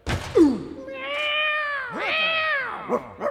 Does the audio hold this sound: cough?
no